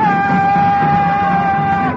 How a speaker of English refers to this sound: They're shouting something. I can hear them. It sounds satanic. It is.